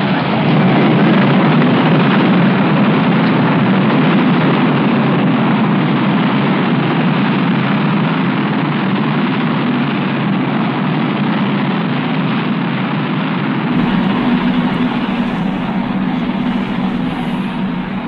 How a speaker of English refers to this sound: Ignition sequence start. 5, 4, we have ignition. All engines are running. We have liftoff. We have liftoff at 7 a.m. Eastern Standard Time.